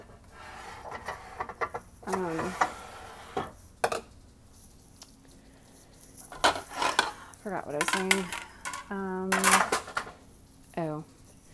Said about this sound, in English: I'm trying to organize my plates here.